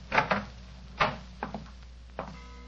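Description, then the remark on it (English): A bedroom door being opened: a few soft clunks and knocks of a handle and latch, spread unevenly over a couple of seconds, fairly quiet, with no voices. “Where does this door lead to?”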